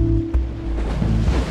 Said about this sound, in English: This is one of the most beautiful views of the ocean I've ever seen. You get these big, slow swells, and then as soon as they crash onto the jetty, they froth up, but then they just kind of become peaceful again.